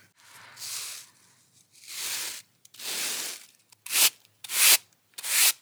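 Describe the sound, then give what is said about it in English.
Freshly ground, flour-like corn for a cake is swept into a basket in six dry, brushing strokes: three longer, softer swishes, then three shorter, sharper and louder ones. No one speaks. “So now I'm sweeping it into my basket.”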